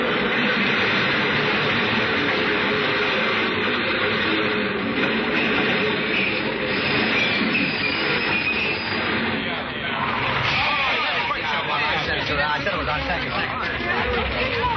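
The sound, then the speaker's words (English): A subway train rushes out of the tunnel into a station during the 5 o'clock rush: a loud, steady roar with a dense rumble of wheels and crowd murmur mixed in, sustained throughout without a break. “I saw the gleaming white headlight appear in the tunnel, rushing toward me out of the dark”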